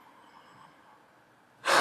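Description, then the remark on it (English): After near silence, a deep, loud breath suddenly rushes in at the very end, breathy and airy, cut off before it finishes. “Just checking in on my breathing.”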